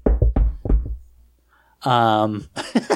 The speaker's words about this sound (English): Let's knock on wood.